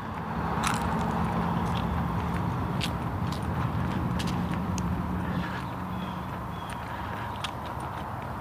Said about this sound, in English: Jeez, what a lot of traffic today. Holy cow.